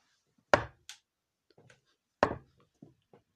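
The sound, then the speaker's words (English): Knuckles rap sharply on a wooden surface twice, with a long pause between them, as a door-knock sound effect. Each loud knock is followed by a few quieter taps. No other sounds. “There was big pauses between the knocks there so I didn't hurt my knuckles because that is just a sound effect caused by myself.”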